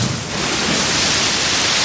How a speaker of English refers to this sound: The reason was that a great cold salt splash had broken right out of the frame.